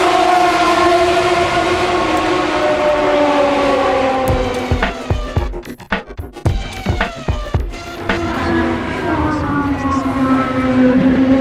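The Petty train sits stationary at a campsite waiting to depart, its engine holding a steady, droning hum with tonal harmonics, interrupted midway by a cluster of sharp clanks and knocks before the drone resumes.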